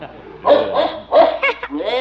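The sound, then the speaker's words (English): A dog, scared by a cow, barks in a short, excited flurry of four or five loud yaps, ending in a rising whine. “The cow scared the dog.”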